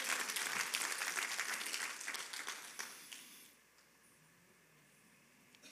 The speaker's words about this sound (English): If you believe that, give the Lord a clap of praise.